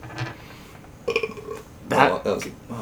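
A forced burp comes out as a couple of short, strained, croaky bursts, fairly loud, with a brief pause between attempts.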